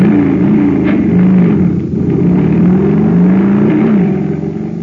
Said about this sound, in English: Wow, that jet cycle is supercharged now. Yep, supercharging takes just one thing, super fuel.